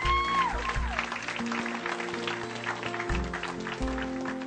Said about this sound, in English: Yeah, let's give them another clap.